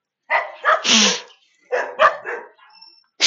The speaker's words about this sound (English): Oh my goodness, those freaking neighborhoods, so many dogs.